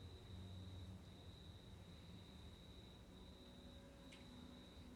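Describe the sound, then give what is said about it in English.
A steady, high-pitched drone of crickets chirping continuously outside a house, with no breaks, over a low background rumble. No one speaks. “There's really loud crickets outside your house.”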